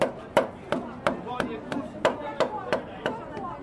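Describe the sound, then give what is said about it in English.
A wooden mallet strikes a metal tower about ten times in a steady, even rhythm, each sharp knock followed by a short, faint metallic ring. No one speaks. “You got a bag of hammers, sticks, mallets. Yeah. You know, here's a wooden mallet.”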